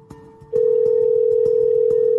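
A telephone ringing tone on an outgoing call: after a brief quiet start, a loud, steady single-pitched tone comes in and holds to the end over a faint rhythmic ticking. No one speaks.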